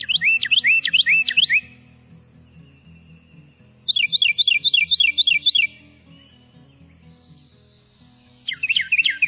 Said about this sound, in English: Here's more of that Carolina wren song, performed only by the male, and representing one of the loudest songs per body volume of any bird.